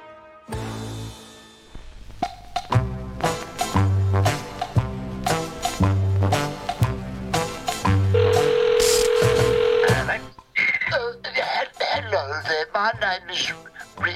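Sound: telephone dial tone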